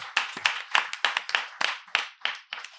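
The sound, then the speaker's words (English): An audience applauds three guests at a monthly event, with sharp, crisp hand claps arriving in a quick, uneven patter and no voices over them. The clapping is fairly sparse, like a modest crowd. “You guys, let's give a big round of applause, please,”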